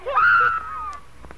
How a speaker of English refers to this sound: As Kit's screams continued, a fever of excitement ran through the other prisoners in the ward.